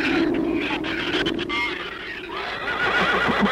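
Livestock screaming in a barn after giant shrews got in: loud, shrill, overlapping horse-like whinnies and cries fill the whole few seconds, rising and wavering in pitch with a rough, noisy undertone and no talking.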